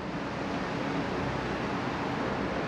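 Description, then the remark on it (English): Steady airport ambience at about 6:30 a.m. as a traveler leaves for spring training in Florida: a dense, unbroken roar of bus and jet engine noise that stays constant and fairly loud throughout, with no clear voices standing out. “Buses, jets, people talking, goodbyes, saying goodbye to my family.”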